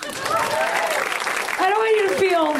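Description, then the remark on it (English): A live show audience claps steadily and loudly throughout, with high whoops and cheering voices rising and falling over the dense patter of hands. “You take a minute and clap for me.”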